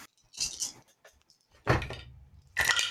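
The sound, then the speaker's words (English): Dice clatter and rattle in three short bursts, with sharp little clicks of plastic knocking together between quieter pauses. “Oh, crap, I mixed my dice.”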